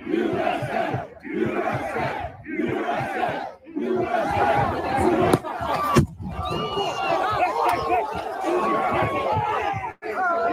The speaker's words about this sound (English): Yeah, they were shouting USA.